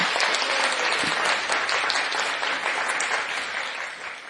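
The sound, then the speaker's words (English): Sustained applause from a crowd, a dense wash of many hands clapping loud, holding steady for several seconds before easing off slightly toward the end. “So please, another round of applause”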